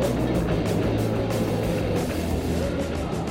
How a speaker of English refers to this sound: Ignition sequence start. 6, 5, 4, 3, 2, 1, 0. All engine running. Liftoff. We have a liftoff. 32 minutes past the hour. Liftoff on Apollo 11.